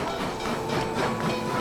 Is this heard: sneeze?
no